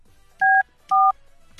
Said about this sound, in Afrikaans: Alright, so kom ons doen dit. Kom ons bel die heel eerste nommer wat ingekom het.